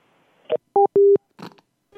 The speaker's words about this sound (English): Did it do, it did a different tone for like a quarter of a second. Did you hear it? Yeah, I wasn't paying attention enough to really hear it. Busy? Is that busy? It's been so long since I've heard like real phone tones.